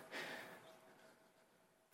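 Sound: sneeze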